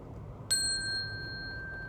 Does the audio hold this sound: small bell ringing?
yes